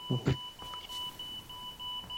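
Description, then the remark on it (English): A baby monitor's low-battery alarm sounds as a thin, steady electronic tone that holds throughout at modest volume, with a couple of brief low thumps near the start. “No, that is my baby monitor alarm. I'm saying the battery's nearly dead.”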